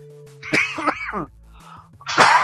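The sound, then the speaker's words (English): A man coughs in a few harsh, throaty bursts, a quick pair of hacks followed by a short pause and another loud cough, with no talking. “He's coughing.”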